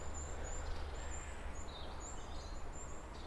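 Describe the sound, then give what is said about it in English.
Thin, very high-pitched peeping calls of small birds, wrens and probably goldcrests, drift from high up in the trees, a run of faint repeated notes over a steady low outdoor rumble. “Just trying to catch up with some little wrens and little peeping birds high up in the trees, which feel a bit gold-cresty.”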